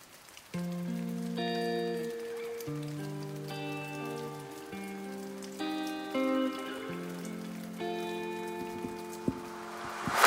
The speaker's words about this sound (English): Now it's 9 a.m. on a Saturday morning. It's raining outside